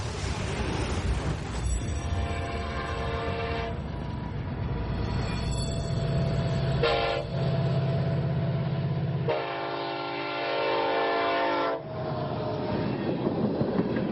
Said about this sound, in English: 400 miles to the northeast, in Trenton, North Dakota. Oil tanker trains, 118 cars long, come and go at a shipping terminal.